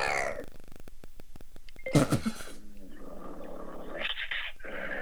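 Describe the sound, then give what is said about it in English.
A person imitates a growling dog: a low, rattling, pulsed growl, then a sharp harsh burst, and then a drawn-out rough growl continuing to the end. “Oh yeah, I like when you, let me hear your meanest growl.”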